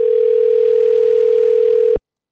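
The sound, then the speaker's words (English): A single steady telephone ringing tone on an outgoing call, a loud, clean mid-pitched beep held for about two seconds before cutting off abruptly. No voices accompany it. “Somebody answer the phone! Somebody answer my calls!”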